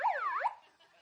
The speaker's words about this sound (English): And I got a really cool gift for Christmas. I got a megaphone. Whoop, whoop. And this is so awesome. I love my megaphone. And it's got a siren on it.